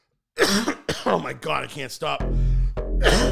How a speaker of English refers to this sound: Oh my God, I can't stop friggin' coughing.